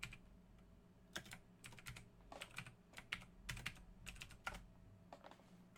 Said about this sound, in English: It's not digging it. I'm not typing it right.